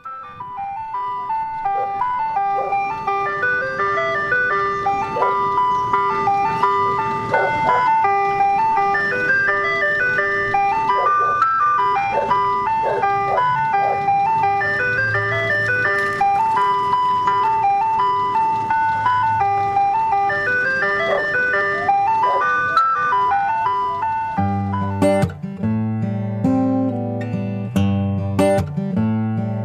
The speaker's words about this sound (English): It's a little cold for the ice cream truck to be coming around, but I think they're looking ahead for us.